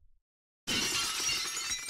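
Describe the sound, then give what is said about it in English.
After a moment of silence, a sudden loud smashing crash erupts, like a door being broken in, followed by a sustained noisy clatter of shattering debris with a final thump at the end. “There's soccer guy just comes in and knocks my door down and wants to kick my ass because I just talk about not being the big sport in Europe, but it is.”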